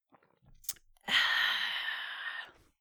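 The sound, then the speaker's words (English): A sip of beer, the drinker's first of the day: a small wet click, then a long, breathy, satisfied exhale lasting over a second before fading out. No one speaks. “That's my first sip of beer for the day.”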